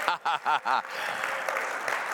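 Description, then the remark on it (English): A church audience breaks into steady, dense clapping that carries on evenly during a morning service, after being asked to show their love for Jesus. It is preceded by four quick, pitched vocal whoops or cheers in a rhythmic burst. “You know the rule around here, if one starts to clap, everybody claps.”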